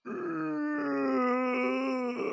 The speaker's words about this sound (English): No, he isn't. Well, at most, it's a death rattle.